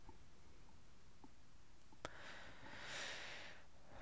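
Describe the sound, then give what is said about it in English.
A single drawn-out sniffle through the nose, a soft breathy rush of air lasting about a second, preceded by a tiny click, with no talking. “I got the sniffles. Hold on one second.”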